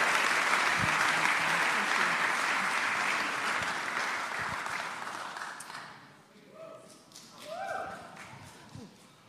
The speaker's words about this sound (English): So you want to give her a round of applause as she comes up?